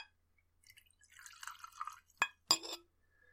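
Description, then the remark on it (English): Jura scotch whisky is poured into a glass, a brief trickling, gurgling pour followed by two sharp glassy knocks, with no talking. “I'm gonna pour it the proper way.”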